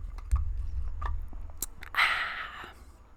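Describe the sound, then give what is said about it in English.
Someone takes a drink of water: a few soft mouth clicks and wet sounds, then a brief gulping swallow, quiet against a low background rumble. “So I saw this TikTok, and I'm gonna take a drink of water because I'm thirsty.”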